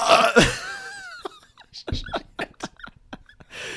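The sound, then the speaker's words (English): A sudden burp erupts at the start with a throaty, wavering tone, followed by a string of short, sputtering breathy bursts, like stifled laughter. “This, you were really leaning into that after that last it accidental burp.”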